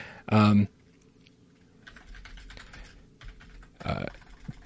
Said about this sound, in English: I mean, it's actually limiting how many spaces I can put after a period? Boy, they're very specific about grammar in this comment box. I can keep typing.